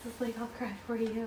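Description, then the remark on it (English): A pet dog named Diesel whines in three drawn-out, moaning cries, each a fairly low, steady tone that wavers slightly, coming one after another with short breaks and no talking. “My dog cries for me. Literally and figuratively.”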